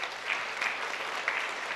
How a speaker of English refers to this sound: Thank you, volunteers. It required more volunteers. Thank you, everyone who serves. Let's give all of our servants a round of applause.